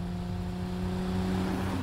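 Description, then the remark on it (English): A car engine hums steadily with a low, even drone, holding a constant pitch for a couple of seconds at moderate loudness, with no voices over it, in a Super Bowl TV commercial for Tide made to look like a car ad. “Yeah, just your typical Super Bowl car ad, right?”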